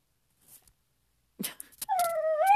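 A puppy gives a few short, breathy yips, then breaks into a high, rising whimper that swells louder as it stretches out at the end. No one speaks.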